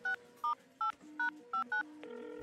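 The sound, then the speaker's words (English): A phone number is dialed with six quick touch-tone beeps in an even rhythm, each a short two-pitch tone, followed by a steady line tone starting at the end. “Right, there's a number. I'm going to call it.”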